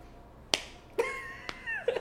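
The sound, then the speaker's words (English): A few light, sharp slaps land at uneven intervals, each a brief crisp smack, with a faint tonal ring lingering between them and no talking; in a film scene a man winds up big to slap a woman but only gently pats her. “The fruitiest little slap.”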